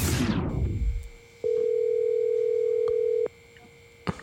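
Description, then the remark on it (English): A steady, unbroken telephone dial tone hums at one mid-low pitch for about two seconds, preceded by a falling rush of noise and followed by a soft click, on a call dialed to a wrong number. “Mike dialed the wrong number, and we ended up talking to this guy.”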